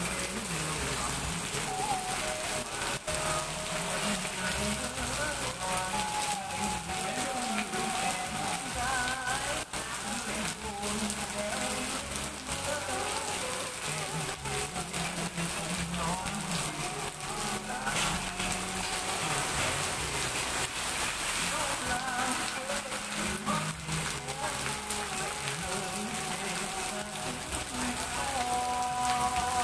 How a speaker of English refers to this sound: Raining season started after big cyclone that came to Danang City. Now I would like you to listen this sound of the rain. Let's enjoy.